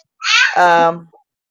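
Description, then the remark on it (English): A single drawn-out meow from a pet cat, Twinkie, loud and clear, starting high and sliding down into a lower, wavering tone before trailing off, with no talking around it. “Get the cat. Pick him up.”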